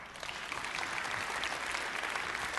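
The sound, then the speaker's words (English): A crowd applauds steadily, a dense wash of many hands clapping at once, sustained and fairly loud throughout with no voices standing out. “Now you can clap.”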